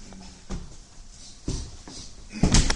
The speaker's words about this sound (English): Right, so what we've done, we've opened a very thick steel door that gives us access into the back of the rack system by which the telescope is moved in elevation.